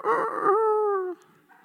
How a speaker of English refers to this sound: You know, it's the crow of a rooster.